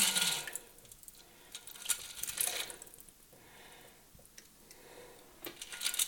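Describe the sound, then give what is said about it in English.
Liquid pours from a cocktail shaker, its small measure removed to expose the strainer, into a glass, a splashy trickle broken by a few light metallic clinks and taps, with no one talking. “So I'm going to go ahead, remove the little measure which exposes the strainer, and strain this into the glass.”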